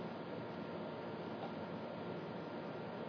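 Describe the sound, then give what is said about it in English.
An air conditioner hums steadily and quietly, a constant, even whooshing drone that never changes over the few seconds, with no voices or other sounds. “There's the sound of the air conditioner, sounds drifting from the street, and my voice.”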